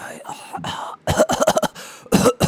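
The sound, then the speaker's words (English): An NFL football player calling in sick to practice fakes being sick, working on a fake stuffy nose with nasal, croaky vocal sounds, followed by a quick cluster of rough, exaggerated fake coughs and another short throaty burst near the end. “This dude working on a fake stuffy nose.”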